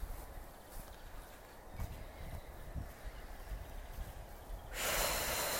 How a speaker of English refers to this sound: Exaggerate the breath. Super long, deep inhale. Long, deep exhale.